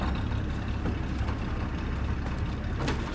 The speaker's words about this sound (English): We drive on, the bush closing in around us. Gum trees give way to ferns and palms.